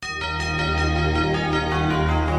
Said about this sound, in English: Oh, and we only got a few more weeks of hearing that beautiful NFL chime, that those bells come in, and we know it means it's serious talk now.